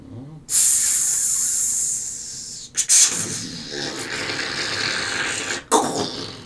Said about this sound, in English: It kind of sits there for a moment and then all of a sudden you hear what sounds like steam.